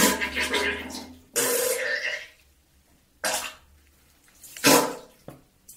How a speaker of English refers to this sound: Thank you for the fart sounds, for the poo-poo sounds.